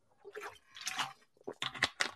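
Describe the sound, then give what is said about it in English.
Someone drinks alkaline water from a bottle, with soft sips and wet gulping sounds followed by a quick run of sharper crackly swallows and bottle crinkles. “Let me hit my water.”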